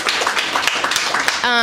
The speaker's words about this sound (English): We'll clap for her.